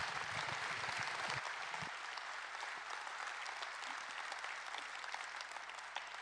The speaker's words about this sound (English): Give them a round of applause, will you?